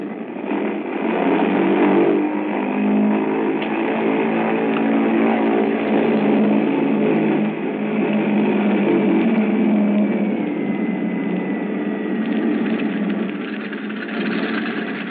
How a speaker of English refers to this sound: The mills of the gods began to grind, I would say, while we were completing our engine run up at the head of the runway.